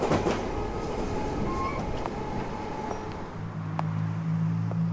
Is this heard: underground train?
yes